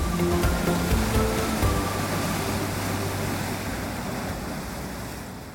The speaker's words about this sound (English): with waves crashing onto the rocks and some houses dotted around the forested hills, rising up from the shore